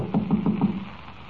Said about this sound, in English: Funny. Nobody answers. Well, we'll just keep knocking till someone does answer.